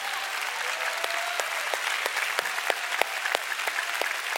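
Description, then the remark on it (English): The audience of City Harvest Church applauds steadily, giving the Lord a big clap, a dense wash of many hands clapping with a few sharper individual claps popping out, sustained at an even level throughout without any voices. “Come on, church, give the Lord a big clap.”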